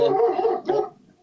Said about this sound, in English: that's my dog, Sir Jackson Husker Doodle, going crazy over here.